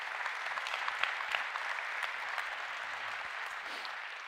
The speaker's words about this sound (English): So can we give God a round of applause for that?